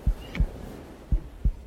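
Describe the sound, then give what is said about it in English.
A slow, muffled heartbeat thuds twice in deep lub-dub pairs, each double thump separated by a steady pause, with no voices, just a faint hiss. “She heard only the sound of her own heart beating in tune with the sea.”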